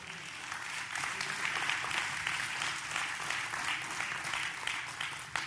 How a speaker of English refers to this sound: You ought to clap on that.